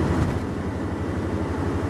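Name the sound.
car driving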